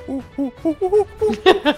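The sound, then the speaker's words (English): A voice imitates a parrot's hooting: about seven short, tuneful hoots in a quick, steady rhythm, rising in pitch toward the end. Moderately loud, with no other talking. “How's the parrot? He's doing well. He's hooting along.”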